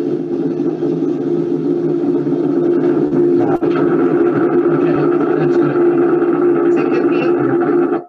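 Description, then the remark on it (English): Needle EMG signal as a concentric EMG needle enters a sphincter muscle: a loud, steady, static-like electrical buzz with a low humming drone, a sharp click midway, and extra crackles toward the end, growing loud at the end as the needle reaches the sphincter muscle. No talking. “So when it got loud right there at the end, that is when the needle makes it into the sphincter muscle.”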